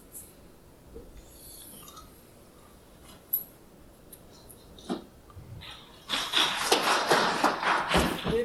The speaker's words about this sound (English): Three claps.